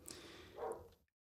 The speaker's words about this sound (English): My dog's just started barking. I'm assuming it has something to do with the cat.